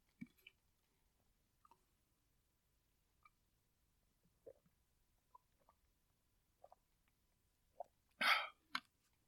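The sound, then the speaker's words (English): Someone drinks water: a few faint, scattered sips and swallows in near silence, then a louder gulp or sharp exhale close to the end. No one speaks. “Excuse me, I got to get some water here.”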